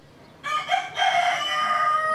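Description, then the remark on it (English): A rooster on a farm in Haiti's central plateau crows loudly, a single harmonic-rich cock-a-doodle-doo that starts abruptly, breaks briefly, then holds a long strained note to the end. No talking. “Goats sidle by, roosters crow, and occasionally you'll see a fat, floppy-eared pig among them.”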